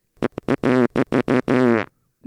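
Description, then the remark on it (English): A long, ripping fart: a loud run of sputtering, buzzy bursts that stretch out and finish with a drawn-out blast, heard on its own with no talking. “Yeah, I like the long rippers. Those are always the funnier fart.”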